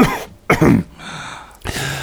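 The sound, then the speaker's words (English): A person imitates a cough with two short, rough bursts, separated by a brief pause, the second trailing into a throaty rasp. “But a couple of moments later, he coughs again and then starts coughing some more.”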